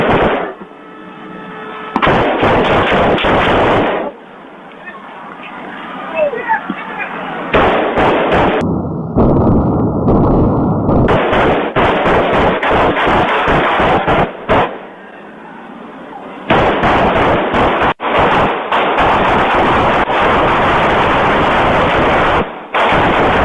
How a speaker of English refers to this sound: after waiting approximately 9 minutes, he then made his way back toward Ned Pepper's bar. As he approached the bar, he opened fire.